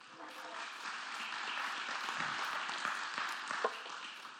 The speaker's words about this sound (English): It's always dangerous to clap for somebody before they've said anything because you never know how it's going to turn out, right?